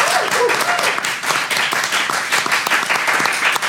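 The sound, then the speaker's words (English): A crowd of people claps steadily for a team being introduced, a dense, sustained patter of many hands, with a few faint voices and cheers mixed in underneath. “A round of applause for Team Handsaw.”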